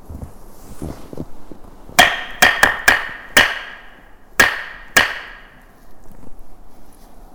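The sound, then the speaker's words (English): Sharp, ringing knocks tap out the shave-and-a-haircut rhythm: five quick uneven raps, a short pause, then two firm final knocks, over a quiet low background hum. “How about trying the shave and the haircut?”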